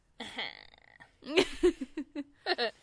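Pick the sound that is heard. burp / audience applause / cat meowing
burp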